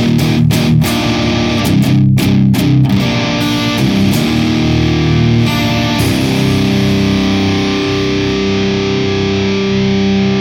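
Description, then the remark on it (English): Heavily distorted electric guitar with the post gain backed off to about 3 o'clock and still clipping, loud and fuzzy with a clipped, saturated edge. A few choppy strummed hits give way to long, droning sustained chords that ring on without any talking. “Bring it back to 3 o'clock. It seems to tame it a little bit. Oh, still clipping.”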